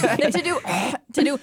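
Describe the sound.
A person deliberately clears their throat to loosen phlegm, a rough, gravelly rasp in a couple of bursts, with a short pause before a final voiced grunt.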